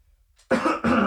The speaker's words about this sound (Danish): skal der lige hostes? Ja, det er det jo sæson for.